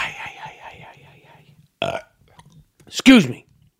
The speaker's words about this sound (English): Excuse me. I don't know if that's, is that disrespectful to burp on a podcast?